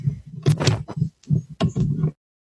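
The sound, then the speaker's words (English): Irregular thumps and scraping rustles of headphones being knocked out and fumbled with, lasting about two seconds before going quiet. No one speaks. “Okay, sorry, I knocked my headphones out.”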